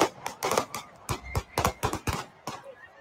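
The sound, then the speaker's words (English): A rapid, irregular string of sharp cracking gunshots, about ten in three seconds, that could pass for fireworks, fired into the crowd at the Kansas City Super Bowl parade, with faint background noise between bursts. “Sounds like fireworks.”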